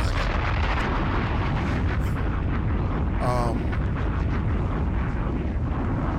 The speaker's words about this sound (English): Bombs!